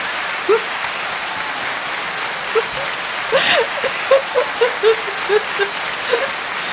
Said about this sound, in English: I guess, like, round of applause for our moms for trying.